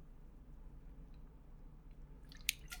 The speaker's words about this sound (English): I'm just a little stressed out and I want to have a nice relaxed day. I'm gonna take a drink of water.